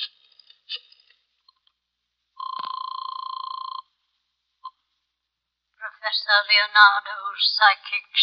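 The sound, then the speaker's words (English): A few quick dial clicks as a phone number is dialed to call Professor Leonardo, a fortune teller and clairvoyant, then a single steady electronic telephone ring lasting over a second, clear. After a short pause, a voice starts talking. “Oh, want to use the phone?”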